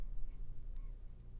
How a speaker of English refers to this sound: I think all we got was breathing. She's breathing and staring at the mic.